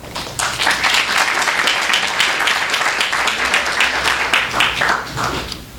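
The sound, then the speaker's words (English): Steady applause from an audience at a Black Clock Magazine event with many writers, welcoming Steve Erickson, a dense wash of many hands clapping at an even level for several seconds before easing off slightly at the end. “we have to applaud Steve to get all these writers here at the same time in this room.”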